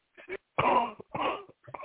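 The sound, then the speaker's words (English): A person coughs several times in quick succession, a couple of short hacks followed by two loud, harsh, chesty coughs and a smaller one at the end. “Now go on and cough up that cancer and spit out down the toilet.”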